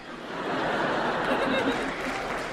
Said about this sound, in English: I don't know why you would applaud that.